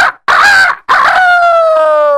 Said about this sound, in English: And then the next morning the rooster crowed.